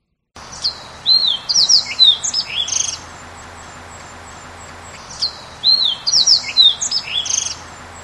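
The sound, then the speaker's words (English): A fox sparrow sings two rich, varied songs of sliding whistles and warbled notes, clear, separated by a short pause against a quiet background. “So that was the fox sparrow”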